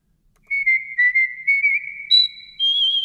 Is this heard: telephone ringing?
no